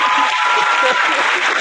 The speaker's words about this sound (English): He said they look at Nick Cannon how they look at Arby's. That was probably the line of the night. I need some claps for that. That was put those hands up there.